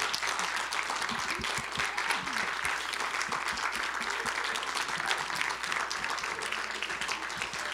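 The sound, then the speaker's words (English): A church audience applauds its pastors steadily, dense overlapping claps forming a continuous wash of sound, with scattered cheers and whoops rising above it throughout. “Well, thank you all so much again for cheering on our pastors each week.”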